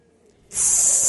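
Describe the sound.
A voice imitates an invisible aerosol spray can, giving a sudden, steady, loud hiss that starts halfway through and holds to the end, alone with no other sounds.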